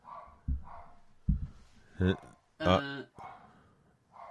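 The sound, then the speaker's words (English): A female pet dog barks twice, two sharp, bright barks close together, preceded by a few dull thumps and soft indistinct voice-like murmurs. “My dog is barking.”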